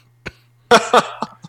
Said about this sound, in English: I got a bad cough from being sick. I'm sorry.